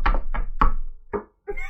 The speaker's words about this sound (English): This me knocking on various surfaces. Wasn't sure if this was wood. So it might have been a cousin of wood at some point.